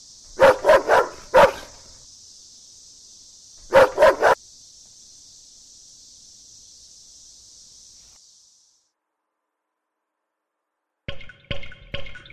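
A dog barks in short bursts, a quick run of three or four then a pair, over a steady hiss that fades out; after a silence, a few more sharp barks follow.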